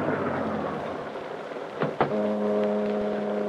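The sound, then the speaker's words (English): A long black car's engine rumbles along a waterfront on a misty night, then a short clunk as it comes to a stop alongside a deserted waterfront building, followed by a steady low idling hum. No one speaks. “and to add to the eerie darkness of the night along the waterfront, a heavy mist had risen, and it swirled and eddied about the long black car, which, moving like a sinister shadow, finally came to a stop alongside a deserted waterfront building.”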